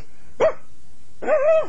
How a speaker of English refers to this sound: You hear the dogs? They're here. Lots of them. Come on, bark! Bark, you! You hear them? Yes, I do. Right now, I'm petting the dog.